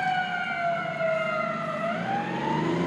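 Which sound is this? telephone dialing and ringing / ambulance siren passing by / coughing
ambulance siren passing by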